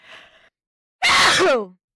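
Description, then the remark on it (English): A single loud sneeze: a soft breathy intake, a brief pause, then an explosive burst that trails off into a falling voiced tail. No talking. “I sneezed.”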